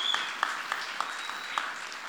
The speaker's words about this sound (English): Wonderful job, kids. Can we give them another round of applause as they exit? Good job, guys.